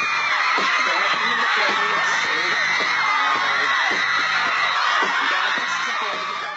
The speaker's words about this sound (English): Screaming teenagers would pile into Times Square, either inside MTV's fishbowl-like studio or out on the street, shrieking for favorite pop stars